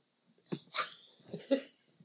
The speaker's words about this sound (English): Sorry, I burped.